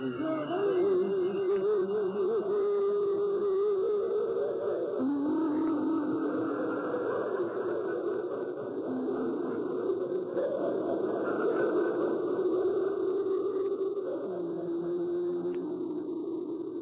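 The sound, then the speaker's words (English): An eerie psychological warfare tape of ghostly sounds, officially called Operation Wandering Soul 10: wavering, moaning tones that slide up and down in pitch, layered over a continuous hiss, steady and fairly loud throughout with no speech. “Now, I have a sample of one of these tapes here, which is officially called Operation Wandering Soul 10.”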